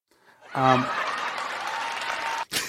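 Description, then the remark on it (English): A clapping sound effect: a burst of crowd applause starts abruptly and holds as a steady, dense patter of clapping, with a voiced laugh at the onset, then cuts off and briefly resumes. “It says clapping, but it didn't know it had laughs with it.”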